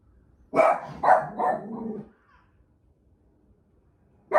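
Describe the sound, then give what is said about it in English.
Dogs bark loudly at a noise outside, a quick run of four sharp barks with the last one drawn out, followed by a short quiet before another bark begins right at the end. “That my dogs aren't just barking for no reason.”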